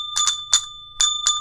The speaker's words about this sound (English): So shall we ding the bell? Do it. You're hanging out, aren't you? I am. Ding that bell.